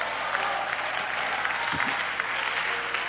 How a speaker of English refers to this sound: Give the Lord a hand clap of praise tonight.